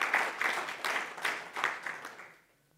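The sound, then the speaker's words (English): A crowd applauds steadily, a dense wash of many hands clapping at once that fades out after a couple of seconds into near silence. “Yeah, you can give God a big hand clap for that.”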